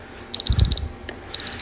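A kitchen timer alarm beeps in rapid bursts of high, piercing tones, a run of about five quick beeps, a short pause, then another fast burst, loud. It signals that the sparge water for brewing beer has reached 165 degrees.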